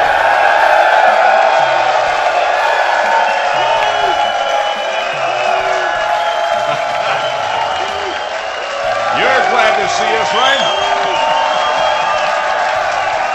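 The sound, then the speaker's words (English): A loud live crowd at a live radio show broadcast at the Ballantine Hotel in Charlotte, North Carolina, cheers and chants 'USA!' continuously: a dense wall of overlapping voices with whoops and shouts rising above it. The roar stays strong throughout with a brief dip near the middle. “They can hear you in Pittsburgh.”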